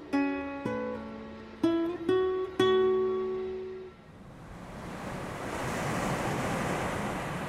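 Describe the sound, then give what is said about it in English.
A few sustained, resonant tonal notes sound in the first half, then steady ocean surf on a beach at the New Jersey Shore in May, after midnight, takes over, a broad hissing wash of waves that swells gradually louder. No one speaks. “The setting is the New Jersey Shore, the month of May, in the present.”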